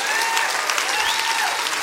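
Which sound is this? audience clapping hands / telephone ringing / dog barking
audience clapping hands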